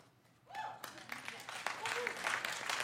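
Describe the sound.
A crowd breaks into applause that swells steadily over a few seconds, dense clapping building in loudness, with a voice briefly audible underneath.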